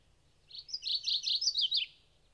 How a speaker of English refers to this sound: Its song is quite striking and novel, though its voice at once suggests the class of warblers to which it belongs.